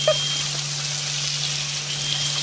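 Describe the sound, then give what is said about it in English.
Bacon sizzles in dark, muddy-brown fat in a pan with a steady, even hiss and faint crackle that holds throughout, over a constant low hum. No one speaks. “The bacon in. Look at the filthy colour of that fat, though.”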